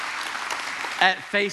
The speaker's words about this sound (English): I mean, we got tickets to the World Series. It was amazing. And check this out. Yes, let's clap. Come on, this is good.